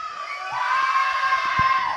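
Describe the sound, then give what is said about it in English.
An audience at a poetry competition with judges cheers and hollers loudly for a couple of seconds, a dense wall of overlapping voices with a few whoops rising above, sustained without any clear speech. “Audience, your job is to make a lot of fucking noise.”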